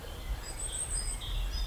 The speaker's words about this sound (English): Just appreciating a little few moments' peace after a long car drive and the birds, chaffinches, tits, nuthatches.